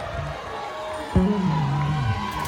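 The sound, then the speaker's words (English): A crowd of voices shouts and cheers together in a sustained, steady roar, with a loud burst just past the midpoint and individual whoops rising out of the mass. “Keep shouting.”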